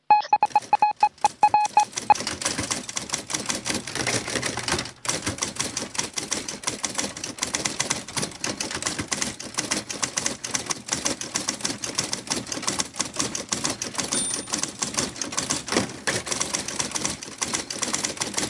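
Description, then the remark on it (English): A printer printing out a tweet chatters away, a few short electronic beeps at the start giving way to a long, rapid, steady mechanical clatter that keeps going to the end, with no one speaking. “we added a printer to it now, too, so hang on.”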